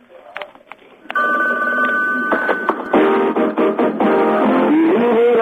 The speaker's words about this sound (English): Yeah, that's the George Costanza's answer phone message from Seinfeld, thank you.